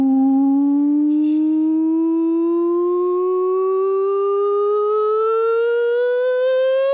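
A loud siren sound effect with a single steady wail that climbs slowly and smoothly in pitch for several seconds, rich and buzzy in tone, with no voices over it.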